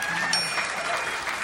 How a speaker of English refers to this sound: Could you give the guys in the band a nice round of applause?